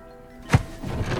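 A bedroom door is closed and swings shut with a single solid thud, a short low thump followed by a soft rattle and a quiet, lingering hum of room noise.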